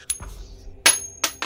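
A flipped coin drops in the dark and bounces on a hard surface, giving three bright metallic clinks with a short high ring after each, fairly loud, with no talking.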